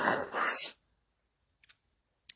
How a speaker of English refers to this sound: Sorry, I keep having yawn moments. Yawn segment.